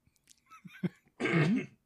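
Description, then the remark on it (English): A loud cough with a rough, voiced tail, preceded by a few small throat-clearing sounds and breaths. “Pardon my cough. I don't have a cough button.”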